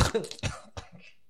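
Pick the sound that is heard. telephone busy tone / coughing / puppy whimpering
coughing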